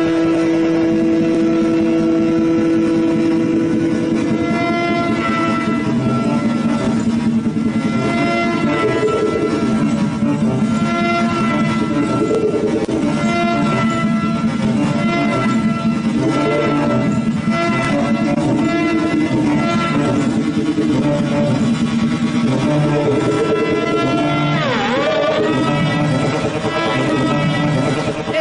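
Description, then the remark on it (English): An experimental instrument fitted with vibrating pellets and batteries produces a loud, continuous growling roar much like a revving motorcycle engine, its buzzing tones wavering and shifting in pitch throughout, with no voices present. “And they say that the inspiration for this instrument came from a motorcycle engine.”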